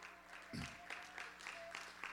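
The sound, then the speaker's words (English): A church audience gives God a hand clap of praise, a dense wash of many hands with a sharp thump near the start and steady bursts of applause throughout, moderately loud with faint voices mixed in. “A hand clap of praise.”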